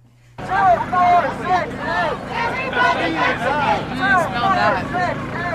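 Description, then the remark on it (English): A big crowd of many overlapping voices shouting and calling out at once during a science march around the Capitol building in Boise, Idaho, a loud, steady babble over a low rumble, starting abruptly after a brief quiet moment. “After the speeches were over, the crowd began its march around the Capitol building. Here are some sounds from the march.”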